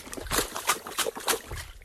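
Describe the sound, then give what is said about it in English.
Wet, squelching splashes of mud repeat in an irregular rhythm under footsteps on a bouncy boardwalk in a swampy area, each step giving a soft slap and sloppy drip, moderately loud with no talking. “That's mud splashing.”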